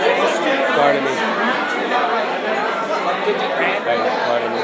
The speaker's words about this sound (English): We're going through a crowd right now. This is amazing.